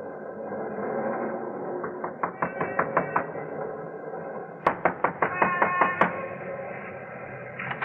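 A cat in a bar window meows in a few bursts, with quick rhythmic clicking or tapping running through the sounds over a steady low background hum.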